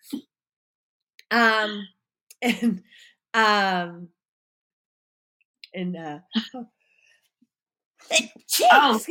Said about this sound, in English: Sneezing out the truth.